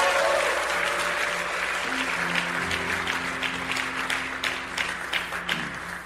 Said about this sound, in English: Let's give our sister a hand unto the Lord.